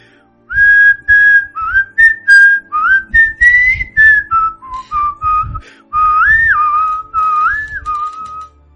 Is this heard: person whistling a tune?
yes